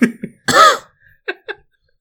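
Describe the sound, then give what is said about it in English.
A few short, sharp coughs: a couple of quick ones, then a louder, rougher hack, followed by two brief lighter coughs after a short pause. “turn your head and cough.”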